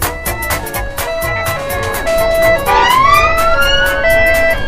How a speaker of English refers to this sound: trying to be heard over the top of the sirens and wailers